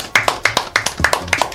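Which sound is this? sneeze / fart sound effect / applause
applause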